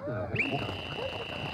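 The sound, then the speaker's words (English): A coach's whistle blows one long, steady, shrill blast that starts abruptly and holds to the end, with muffled voices murmuring underneath. “We get really crazy when the leader McNugget pitches it to a coach McNugget with a hat and a whistle to really give you the nuts and bolts on how to make McNuggets.”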